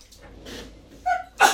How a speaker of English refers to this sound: I'm going to sneeze.